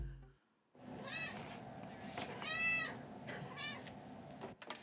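A cat, Pico, a teen cat, meows three times in a row, each call a drawn-out, rising and falling wail, with the middle one loudest, over a low steady background hum.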